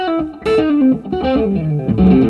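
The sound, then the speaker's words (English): A sustained electric guitar played through a Vertex Ultraphonics Dumble-style overdrive pedal, with warm, smooth overdrive, plays a melodic phrase of bending, singing notes, rich in harmonics and fairly loud, with no voices present. “So, like the Ultraphonics is one of my kind of go to, and that's the one that you're playing right there.”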